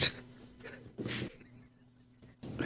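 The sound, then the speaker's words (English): A dog makes soft, strained whimpering noises in a few short bursts, fairly quiet, with brief pauses between the whines. “Enough out of you, dog. That's enough out of you.”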